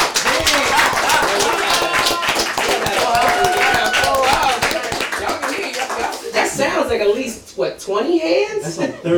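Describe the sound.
A small group of people claps loudly and steadily for several seconds, the dense patter briefly dipping near the end. Voices call out and chatter over the applause.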